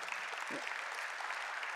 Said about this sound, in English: yet out in the lobby last Sunday, I met four families who were here for the very first time. And we're continually, amen, yeah, we can clap and celebrate that.